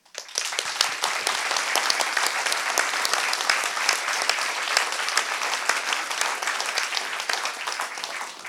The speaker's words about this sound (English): The longer you guys clap, the more of a reprieve I had from starting to talk, so I was keeping clapping there for a while.